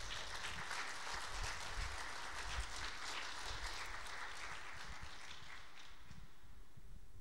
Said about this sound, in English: Can we get a round of applause for our guests today?